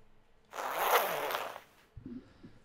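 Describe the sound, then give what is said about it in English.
A large sack's big zipper is drawn open in one long rasping pull lasting over a second, followed by a brief low, muffled sound. “We're trying to open your sack, Liam.”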